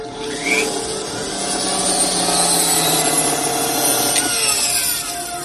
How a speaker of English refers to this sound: This was the scene in the steel mill with Robocop and Lewis when she arrives and has his gun and baby food and stuff. He has the drill and he takes the long screws out of his head.